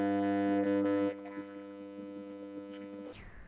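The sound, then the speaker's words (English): A loud, steady electrical buzzing hum on a microphone audio line, with a dense harmonic drone, dropping in level after a second but droning on, then giving way to hiss and a thin high-pitched whine near the end. “And now I get a like a loud bzzz, like a hum.”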